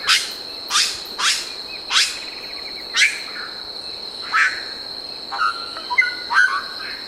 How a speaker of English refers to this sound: We leave you this week deep in the rainforest. A chorus of brilliant colored birds greets the dawn near Iguaçu Falls, close to the border of Brazil and Argentina. There are over 100 bird species in the area, including toucans, mock-mots, woodpeckers,